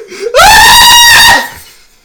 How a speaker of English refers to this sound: I'm so sorry for whoever's wearing headphones. This man just screamed in your guys' ears. It was kind of hype.